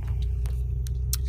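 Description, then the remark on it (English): An old car's engine rumbles steadily in a driveway, a deep, continuous low drone, with a few brief rattling clicks over it. No one speaks. “This car's feeling old today.”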